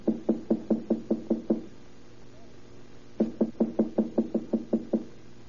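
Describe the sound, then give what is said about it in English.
Two quick runs of about eight firm knocks on an apartment door, number three, evenly paced and separated by a short silent pause. No voices. “Wait, I'll knock first.”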